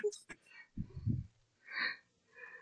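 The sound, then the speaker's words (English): A person yawns, a drawn-out breathy, groaning exhale in the middle of a few seconds of short wordless vocal sounds and breaths. “I was yawning.”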